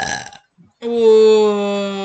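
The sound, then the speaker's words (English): A short rough noise, a brief pause, then one long, loud, droning burp, holding a steady low pitch for over a second. “If you're still burping it up and it tastes as bad as it does going down, you know that's something wrong.”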